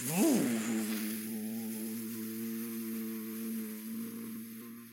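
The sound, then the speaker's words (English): A steady, loud buzzing drone of a hovercraft engine that swoops up in pitch at the start, then holds an even hum for several seconds; it sounds like a voice imitating the engine. “Hovercraft is hovering.”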